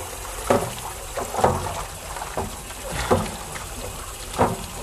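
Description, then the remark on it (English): Water sloshes and splashes in a series of short bursts about a second apart as a bowl is washed by hand with soap and water. No one speaks. “Some water, soap, and water.”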